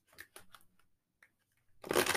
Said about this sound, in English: But I would love to pull one more angel card for you and just like see what you get here. Then I will end it off and send it to you, okay? All right, so let me get one more card. Let me do a shuffle. All right.